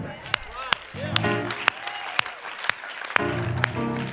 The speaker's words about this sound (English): It's even better if you clap on rhythm. But we'll forgive you if you don't.